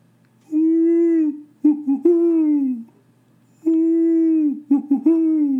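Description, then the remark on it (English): A voice imitates a great horned owl's hooting: a long, low hoo followed by a few quick, shorter hoots, with the pattern repeated twice. It sounds loud. “As soon as I get out of the car, I'm listening to a great horned owl in my neighbor's yard.”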